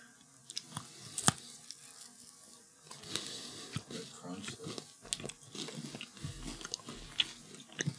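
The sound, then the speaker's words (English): Wet chewing of a chewy candy bar with caramel, crisped rice and chocolate: sticky smacks and soft clicks recurring irregularly over several seconds, fairly quiet, with no talking. “Okay, so very chewy.”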